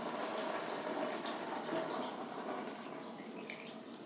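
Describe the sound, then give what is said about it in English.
Chicken stock is poured steadily into a hot pot of soup holding dark chicken meat, a continuous splashing, gurgling rush with a faint sizzle underneath, fairly loud, easing slightly toward the end. “Now, we're ready to add our stock.”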